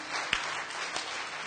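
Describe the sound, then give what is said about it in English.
After a prayer, a crowd gives a great big hand clap, clapping steadily in a dense, continuous wash of applause, with a brief high-pitched war whoop rising above it early on. “Come on now, give him a great big hand clap and war whoop.”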